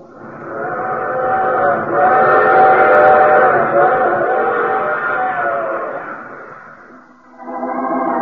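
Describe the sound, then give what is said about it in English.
A train sounds loud, its long, wailing whistle-like tone rising and holding for several seconds, fading briefly, then sounding again as another blast starts near the end. No one speaks. “I take this same train each week at this time.”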